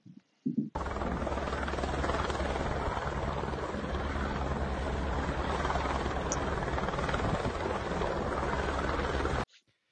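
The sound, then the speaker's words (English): A helicopter flying overhead over a fire, attempting to put it out, roars steadily and loud for several seconds, its rotor thumping beneath a dense, rushing engine noise, then cuts off abruptly. “To me, it looks like that helicopter is lighting stuff on fire, not putting out a fire.”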